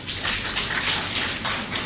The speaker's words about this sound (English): So let's put our hands together for CDD.